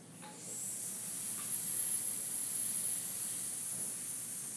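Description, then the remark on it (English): As a breathing exercise focused on exhaling, a person makes a long, steady snake-like hiss, a bright breathy sound held without a break for about four seconds, with no talking. “What if we do hissing like a snake?”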